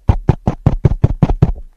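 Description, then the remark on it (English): A rapid series of about nine heavy thumps, evenly spaced and loud, as a man raps his knuckles directly on a microphone in downtown Phoenix, with a weaker final tap and no voices. “And he's hitting the mic saying, "Hey, idiot, look at your clock."”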